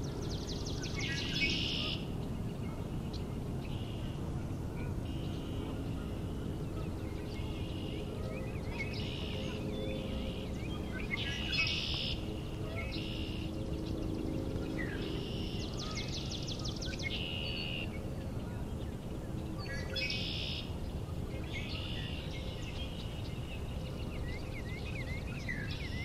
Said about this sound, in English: That sound? Sound kind of like Northern Cardinal singing, but a little off. It's not close though. Huh. So I have to wait and see if it gets closer.